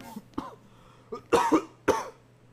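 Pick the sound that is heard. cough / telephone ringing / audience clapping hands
cough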